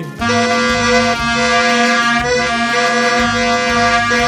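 A loud plastic vuvuzela blares a single buzzing, brassy note for about four seconds, wavering slightly with a few brief stutters in the tone, with no voices.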